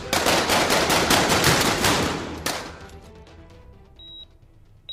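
A loud, rapid burst of automatic gunfire rattles for about two seconds, then one last sharp crack rings out before the noise fades into quieter echoes and a thin high tone.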